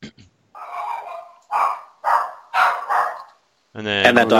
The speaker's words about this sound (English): I want you to know the dog is 13 pounds and he thinks he's an attack dog.